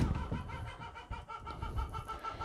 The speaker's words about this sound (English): She's being so loud. So aggressive. Oh my god, that chicken, man.